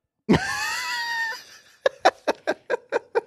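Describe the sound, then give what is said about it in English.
A cat lets out one loud, drawn-out meow, then follows with a quick, evenly spaced run of about seven short, clipped meows. No one speaks. “Oh my God, that was the loudest meow ever.”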